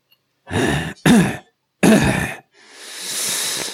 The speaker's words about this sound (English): And suddenly, from the shadow of the mouth of the biggest detergent bottle, comes a dry and rasping cough.